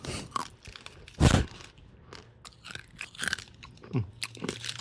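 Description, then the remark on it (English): Sharp, brittle crunching as someone bites and chews old, hard gum from a 1988 Topps baseball card pack, with one loud snap early on and a string of smaller crackling chews after it. “This gum is a little shardy. Are you going to be eating that gum,”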